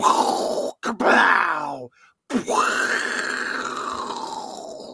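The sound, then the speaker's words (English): A voice imitates movie explosions with loud, rough, roaring bursts: two short blasts, then a longer booming rumble after a brief silence, the last one trailing off slowly. No words are spoken. “You were excited just hearing the explosion noises because you were picturing explosions in your head.”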